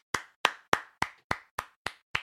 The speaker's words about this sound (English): I'm clapping for the story, not the narration.